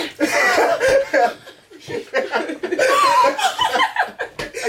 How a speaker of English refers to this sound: Oh, that was a sneeze. I just realized that was a sneeze.